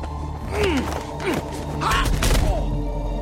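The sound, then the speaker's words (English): Several dull, heavy kick thuds land in quick succession as a man puts the boot in, mixed with pained grunts and sharp gasps over a low rumbling background. “And he put the boot in at least.”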